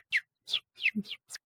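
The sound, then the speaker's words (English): A bird outside a window chirps in a quick series of five bright, high notes, each a short downward-sweeping tweet. “Do you have a bird in your office? I'm hearing a bird.”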